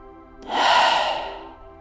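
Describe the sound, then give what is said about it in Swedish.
A single slow, audible exhale, airy, swelling over about half a second and then trailing off gently, like a soft sigh with no talking, as a person breathes out to let go. “Bara andas ut och släpp.”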